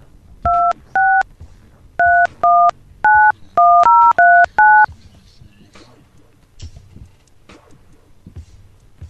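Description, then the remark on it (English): A touch-tone keypad dials a wireless phone number into the AT&T After Hours Technical Support line: about ten crisp, loud dual-tone beeps in quick, uneven bursts, followed by a few seconds of faint background noise. “Please enter the wireless phone number that you are calling.”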